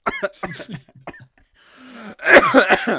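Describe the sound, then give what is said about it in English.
A man coughs in a harsh, raspy fit after breathing in towel lint, a burst of several loud throaty coughs following a breathy wheeze and some short vocal sounds. “Sounds like you got some towel lint.”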